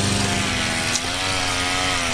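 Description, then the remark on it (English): A lawn mower engine runs steadily, a loud, buzzing drone with a constant pitch and no pauses, with no voices. “we are committed to finding your perfect lawnmower beer”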